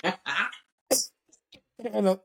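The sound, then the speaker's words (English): Several harsh coughs in uneven bursts, with short pauses between them, ending in a rougher, voiced throat-clearing sound. “I said, man, I'm coughing up a lung.”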